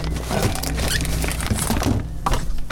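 A dull, solid thunk of someone hitting themselves on a fridge in an apartment kitchen while making cookies and holding a recorder, set against a steady bed of clattering, rustling kitchen noise, with no voices.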